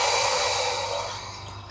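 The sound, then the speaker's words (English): A steady, hissy pour of water into a glass, fairly loud at first, then gradually softening over under two seconds, with no talking. “And as you're doing everything, for example, as I'm serving this water, I am relaxed.”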